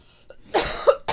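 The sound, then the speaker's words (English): A short fit of coughing from a person who has been sick: three harsh, raspy coughs in quick succession, fairly loud, with no talking around them. “We're both sniffly and we're both coughing.”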